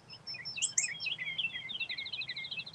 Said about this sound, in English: Welcome to the dulcet melodies of the birds singing. It's a great word, by the way. Dulcet. Beautiful sounds, noises. And you can hear that here.